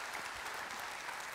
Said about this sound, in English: Amen. Amen. Can we give a round of applause for that word and challenge?